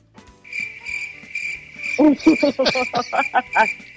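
crickets chirping sound effect

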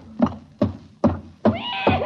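horse neighing

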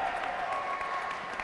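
crowd applause and cheering

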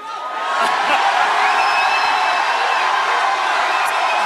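crowd cheering wildly

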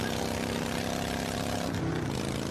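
motorcycle engine roaring

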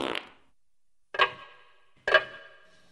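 grandfather clock ticking

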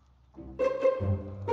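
chickens clucking

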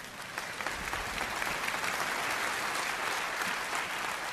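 audience clapping

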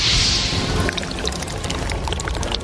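pouring a drink

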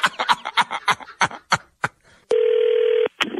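phone call being placed

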